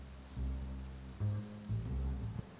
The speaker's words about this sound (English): The truck emerges. It is at night. Rain is hitting the windshield at a thunderous force. You can barely see the road ahead of you,